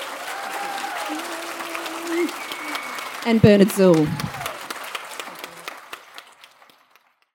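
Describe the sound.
An audience at a live session of Byron Writers Festival 2018 applauds steadily to thank the panel speakers, a dense wash of clapping with a brief voice speaking over it, then the applause thins out and fades away over the last couple of seconds.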